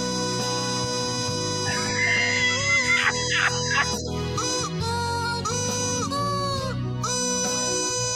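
A stretch of loud, nasal duck quacks, with bending, wavering calls piling over one another above a steady droning background, continuing without pause for the whole stretch.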